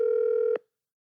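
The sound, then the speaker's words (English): A steady electronic ringback tone from an outgoing phone call sounds once, clear, for about half a second, then cuts off into silence. No one speaks. “I'm calling”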